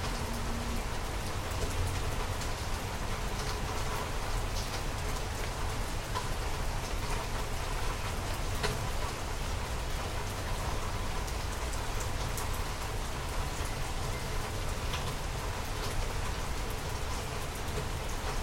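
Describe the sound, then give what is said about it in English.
Steady rain falls continuously, a dense hiss of drops pattering on surfaces with no pauses, holding an even, moderate loudness throughout and with no voices. “Breathing now, going into the silence to allow yourself to be nourished by the beauty of the rain.”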